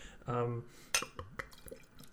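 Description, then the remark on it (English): A red St. Petersburg Imperial Russian Stout beer pours into a glass, with a short gurgling burst followed by scattered drips, splashes and light glassy clinks over about two seconds. “Should we get some of that pouring audio in there?”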